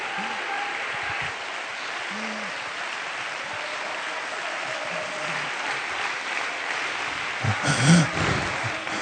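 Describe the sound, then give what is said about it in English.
An audience at a church service claps their hands one more time in a steady, dense wash of applause lasting the whole stretch, with a brief louder swell near the end and faint murmuring voices underneath. “Somebody clap your hands just one more time.”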